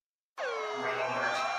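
A loud, blaring air horn blast used as an alarm sound effect kicks in abruptly after a brief silence and holds steady, its harsh, buzzy tone dipping slightly in pitch at the start before sustaining to the end.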